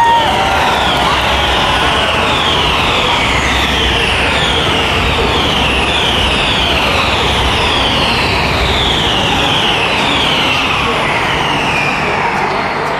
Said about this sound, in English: Here we go. Listen to the crowd.